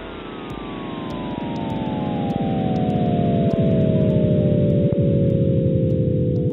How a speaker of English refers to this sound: In fact, that's what physicist John Cramer used to work out the sound of the Big Bang. Go on, Sound Explorers, let's listen to it again.